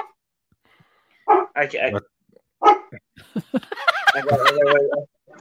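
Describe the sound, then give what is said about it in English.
A 75-pound dog, not yet a year old, barks in a few sharp bursts, then breaks into a longer, rapid run of yappy barks before falling quiet. “She's gonna close the slider so that I don't know what he's barking at.”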